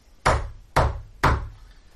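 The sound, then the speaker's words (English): Three loud, evenly spaced knocks strike a heavy iron portcullis, each one a sharp metallic bang that rings briefly before the next. No voices, just the clanging blows. “tries knocking on the porticus.”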